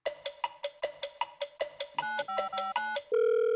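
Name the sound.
telephone call being dialed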